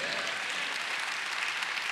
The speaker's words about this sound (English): That's a great golfer's clap. Tiger's on hole number 9, and he's just putting it in.